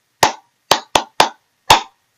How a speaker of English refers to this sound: Clap for yourselves. Well done.